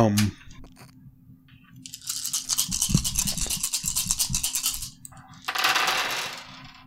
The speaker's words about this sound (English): Why does he have to roll so many dice? What is that? That's at least like 7 dice.